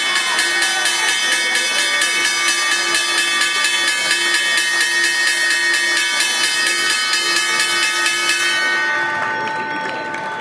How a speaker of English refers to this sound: As the headlines over the weekend have come fast and furious, let's get the opening bell here.